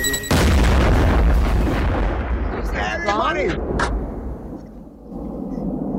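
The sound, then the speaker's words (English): A loud fireworks blast bursts out and rumbles on, with whistling streaks rising and falling partway through before the crackling booms slowly fade away. “You give him all the fireworks.”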